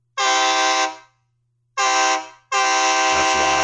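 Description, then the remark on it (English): A loud Nathan Airchime K3 train air horn blasts three times, a long chord, a shorter one, then a sustained final blast, each a rich multi-tone blare with no talking. “Nathan Airchime K3.”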